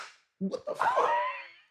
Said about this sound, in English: She just sneezed on me, young.